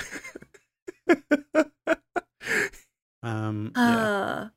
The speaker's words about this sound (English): Oh, now look who's yawning. Oh wait, I'm not. I'm yawning quickly and quietly.